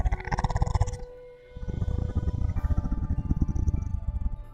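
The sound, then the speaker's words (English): A deep, rumbling animal growl with a rough, pulsing texture, loud and sustained, briefly dropping off about a second in before resuming steadily, over a faint humming tonal background. “Something's growling.”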